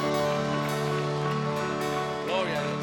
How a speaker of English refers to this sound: Hay que dar un aplauso a Dios esta tarde. Let's give the Lord a clap offering here tonight.